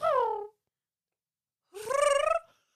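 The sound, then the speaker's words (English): A person imitates a pigeon's coo with two warbling, voiced hoots: a short falling one, then a pause and a longer, wavering call that rises and trails off. “Do the pigeon.”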